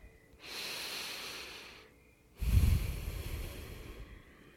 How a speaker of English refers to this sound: I invite all of you listening out there to take a deep breath.